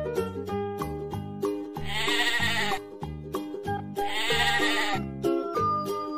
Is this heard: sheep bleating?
yes